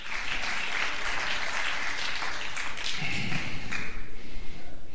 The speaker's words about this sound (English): No, it's all right. It's all right. That was a weak clap, but that's all right.